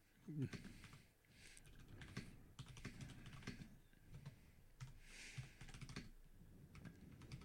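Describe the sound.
Rapid, steady clicking of keys on a computer keyboard, close by, with brief pauses between bursts; faint voices murmur underneath.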